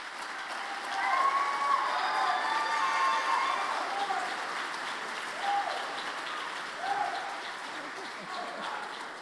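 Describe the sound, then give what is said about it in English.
A crowd at GC applauds a student honored with a scholarship, steadily, the dense clapping swelling early and then holding, with a few brief cheers and whoops breaking through on top. “See, I knew you wouldn't be able to hold your applause.”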